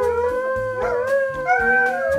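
A hound howls in long, wavering, gliding tones, loud, over a steady low rhythmic musical backing for the Hound Howls show on HoundNYC.com, with no talking.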